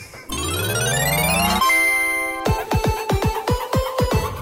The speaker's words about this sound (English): We hit the bell.